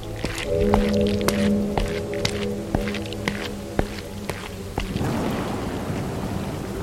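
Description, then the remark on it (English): Rain patters steadily onto a steep dirt path that has turned to mud, with scattered sharp drips and a low droning hum underneath; the downpour thickens into a denser wash toward the end. “So as your group begins the long trek back to the amphitheater, the rain is making this more difficult. What was a dirt path is now basically mud”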